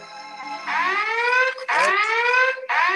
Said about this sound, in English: Virgin alarms. Programmed to go off before you do. That was my Virgin alarm.